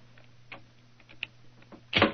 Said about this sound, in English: Is the door locked? Yes, but I think a skeleton key will do the trick.